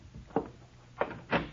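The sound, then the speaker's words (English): An office door opens with three short wooden clunks and rattles, moderately quiet, spaced unevenly over a second and a half with no talking. “First door to your right.”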